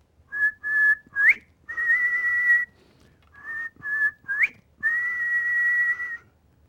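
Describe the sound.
A person whistles in the front yard to call their dog home, a loud phrase played twice: a few short notes, a quick rising swoop, then a long held tone, with no talking.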